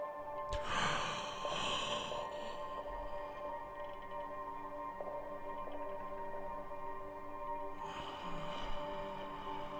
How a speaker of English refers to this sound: This is when we uncover our strength and our unity. Take one deep breath with me.